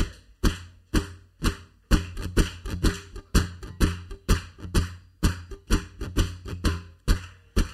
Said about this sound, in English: As many people to clap along to this as possible. It's just quite easy. You could just just clap on the beat. He's got it. Yeah. Keep going.